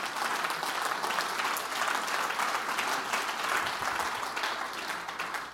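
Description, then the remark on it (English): A church audience, standing, claps hands together in a dense, steady burst of applause that holds at a constant loudness for several seconds before tapering slightly at the end. “Let's stand to our feet and clap our hands and say, let the church be on fire.”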